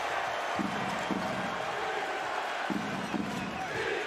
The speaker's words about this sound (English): Crowd chanting for defense.